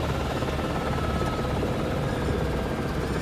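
A helicopter roars as it lands on a ridge just over the lake from Te Anau, a steady, dense wash of rotor and engine noise filling the whole clip without pause and with no voices.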